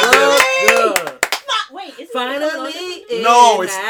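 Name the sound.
hand clapping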